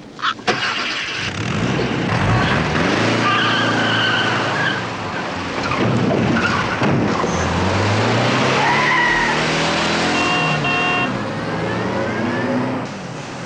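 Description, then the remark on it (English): A car engine revs hard as a woman drives off in a man's car that she took, tires squealing and skidding loudly in long rising and falling screeches, with no voices. “That woman, she took my car.”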